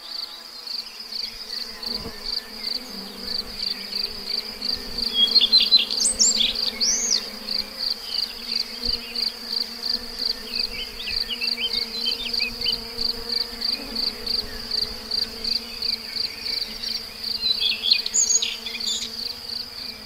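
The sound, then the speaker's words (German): A steady low hum of buzzing bees runs throughout, overlaid by a rapid, evenly pulsing high insect trill and a few brief chirps, with no one speaking. “Weil die Biene ist nicht nur ein grosser Helfer und Freund für uns, sondern wir müssen den Bienen ebenfalls helfen.”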